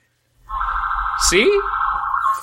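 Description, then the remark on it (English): An ambulance siren blares loudly as the ambulance turns into an apartment complex, a steady, piercing tone that holds for about two seconds, with a brief swooping sweep partway through and a low rumble underneath. “But there's an ambulance turning into my apartment complex.”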